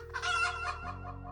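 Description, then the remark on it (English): A pet hen, Tuk-Tuk, clucks in Falmouth on June 4th, 1980, as a thunderstorm passes over, in a short, bright burst of throaty calls that trail off into a lower steady hum, fairly loud, with no talking. “So, to be on the safe side, Edwin figured he'd better go outside and get his pet chicken, Tuk-Tuk.”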